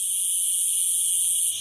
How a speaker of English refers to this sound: It's an all-too-familiar sound in Texas every summer as the male cicada inundates our eardrums with that distinct and occasionally annoying chirping that they use to attract a mate.